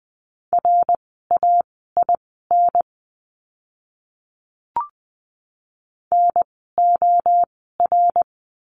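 Morse code sent at 20 words per minute in a lesson on the letter d, sending words: a steady mid-pitched tone keyed in quick dots and dashes, two bursts of characters separated by a pause holding a single soft click.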